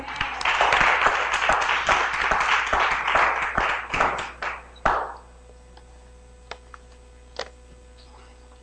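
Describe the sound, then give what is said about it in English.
A church audience breaks into loud, sustained applause, giving God a hand clap of praise for his word; dense clapping tapers off after about five seconds, leaving a few isolated claps and faint background noise, with a brief spoken word. “So let's give God a hand clap of praise once again for his word.”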